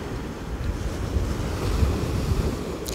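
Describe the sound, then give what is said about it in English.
Strong wind roars steadily for three seconds on Rhodes, Greece, during wildfires, a dense low rumbling rush with gusty buffeting that swells slightly toward the middle, with no voices; the weather is cooler than in recent days. “The situation here, weather-wise, is a bit cooler than it's been over recent days, but the wind is up and there are concerns that that could send smouldering embers flying through the air and sparking off new blazes.”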